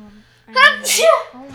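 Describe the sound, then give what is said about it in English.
One loud sneeze: a short voiced 'ah' build-up followed by a sharp, hissy burst of breath. It lasts under a second, with quiet background sound before and after. “Bless you.”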